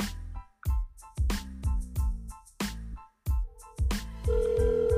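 A phone call being placed to a best friend: a rapid series of short electronic dialing beeps, then a steady tone begins near the end, clear with no one speaking.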